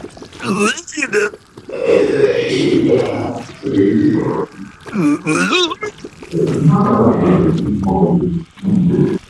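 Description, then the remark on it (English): A voice imitates a big giant ooze-faced monster conversing with a tiny kobold, making grunting, slurping and sloshing ooze noises in a run of wet, gurgling, growly bursts with brief pauses, loud throughout. “And once this grunting and slurping and sloshing and horrible, just gut-wrenchingly awful noise stops, Sunka pads over to where you are.”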